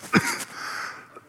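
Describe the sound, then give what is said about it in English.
A single short, throaty cough bursts out, followed by a breathy, hissing exhale that fades over the next second. No one speaks. “And I have to cough.”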